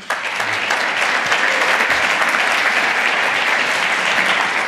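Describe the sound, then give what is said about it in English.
A crowd claps steadily, a dense wash of many hands applauding at an even, fairly loud level from start to finish without a break or any voices rising above it, as a speaker is introduced before a talk about exploits. “Give a round of applause to him.”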